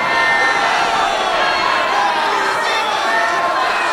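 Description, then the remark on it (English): A dense, loud crowd surges and tramples in a street with stamping feet, a continuous roar of many overlapping shouts and voices with a restless, churning rush that never lets up across the whole stretch. “All goes dark, and under the stamping feet of the insensate crowd, our heroes take their last breaths in these bodies.”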